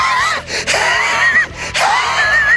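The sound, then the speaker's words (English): A voice imitates a bear gasping and huffing after eating M&Ms doused with Tabasco: three loud, breathy bursts with strained, wavering wheezes, separated by brief pauses. “The big old thing started gasping and huffing his darn fool head up.”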